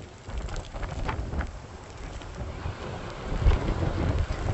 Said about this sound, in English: So we're in the middle of a tropical storm. Storm chasers. We're getting pelted with sand and rain. But a view on the boardwalk.